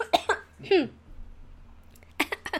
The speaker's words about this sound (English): Here we go, coughing again.